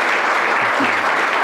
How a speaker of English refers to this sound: Well, round of applause, guys. Thank you so much.